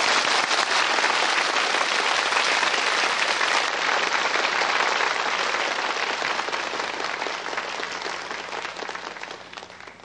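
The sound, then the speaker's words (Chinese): A large audience breaks into loud, sustained applause to welcome Supreme Master Ching Hai to give a teaching, a dense wash of clapping that holds steady for about ten seconds and tapers slightly at the end, with no voices over it. “好，就让我们以最热烈的掌声恭请师父开示。”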